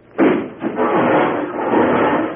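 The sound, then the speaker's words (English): A sudden loud crash as someone walks through a wall where he thought there was a door, followed by a second impact and a sustained rumbling clatter of breaking, splintering material and falling debris, with no voices. “Doggone it, I thought there was a door there.”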